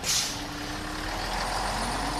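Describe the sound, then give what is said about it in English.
A bus in London idles with a deep, steady engine rumble, opening with a sharp hiss of air brakes releasing as it arrives. No one speaks. “Luckily, the bus is here, or we would be having words.”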